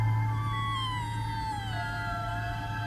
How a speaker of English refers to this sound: Then I heard a noise. It sounded like a high, mournful meow.